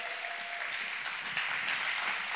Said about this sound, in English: Why don't you guys give him a round of applause?